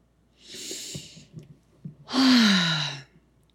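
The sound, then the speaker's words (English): A slow, airy inhale followed by a louder, longer exhale that turns into a voiced, sighing release; one deep breath in and out as part of a breathing exercise, with no talking. “All right, let's get into a breathing exercise.”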